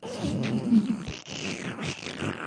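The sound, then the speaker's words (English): A snorting backwards sneeze: rough, raspy nasal inhalations that sputter and rattle continuously for a couple of seconds, fairly loud and alone with no talking. “No, I was sneezing backwards into my nose.”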